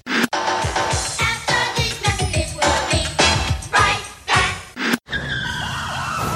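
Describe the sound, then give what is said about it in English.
Loud, chaotic screeching of car tires skidding, with abrupt crashing bursts, then a siren wailing in rising and falling sweeps at the end. No one speaks. “I've just been in a car wreck and I'm hurt.”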